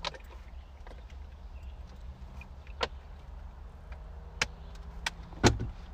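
Someone climbs back into a car: a few sharp clicks and a soft thump spaced over several seconds, over a steady low rumble, with no one speaking.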